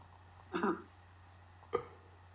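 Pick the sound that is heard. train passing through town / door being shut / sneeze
sneeze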